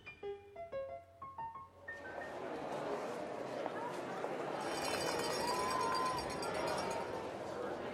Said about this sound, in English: Here we are at the casino. You can hear dice rattling, cards shuffling